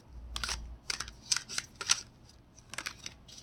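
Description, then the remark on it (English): A deck of cards being shuffled: a series of crisp, papery riffles and snaps in short bursts with brief pauses between them, fairly quiet and with no one talking. “I don't normally say my question out loud, but I guess if I'm recording this podcast, maybe I'll just let you listen to the sound of me shuffling my cards.”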